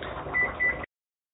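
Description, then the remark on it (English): Two short electronic beeps from a kitchen oven timer sound in quick succession over a low background hum, then the sound cuts off abruptly; the timer marks 10 minutes of cod baking in an oven at 400 degrees. “Okay, so that's the timer on our cod.”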